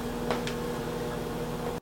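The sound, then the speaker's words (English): Eggs pop twice in quick succession inside a running microwave oven, a little over a minute into cooking, short sharp cracks over the appliance's steady droning hum, with no voices. “And a little bit over a minute down, still popping away.”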